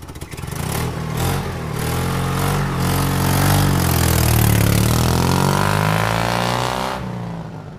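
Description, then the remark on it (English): A car engine revs and accelerates steadily as the car gets back onto the road, its pitch climbing and sweeping as it picks up speed, loud, then cuts off abruptly near the end. No voices. “After I got the car back on the road again, I felt like a fool.”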